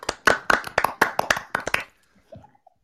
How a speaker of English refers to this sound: I want to do real claps. Oh, yeah, I can clap. We clap. Yes.